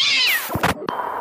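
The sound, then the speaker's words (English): A single high, thin kitten meow sliding downward in pitch, followed by a few short bumps and rustling noises with no one speaking. “Here, have a kitten.”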